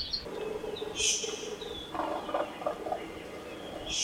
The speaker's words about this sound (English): The birds we're listening to are predominantly honeycreepers, a diverse group that descended from a Eurasian finch 3 to 5 million years ago